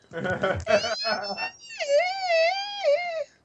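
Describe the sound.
After a moment of quick vocal sounds, a voice lets out a sustained, high-pitched squeal that wavers up and down, mimicking a dolphin, lasting about a second and a half at moderate loudness.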